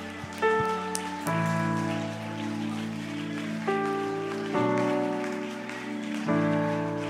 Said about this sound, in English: Well, clap your hands and lift up your voice once again.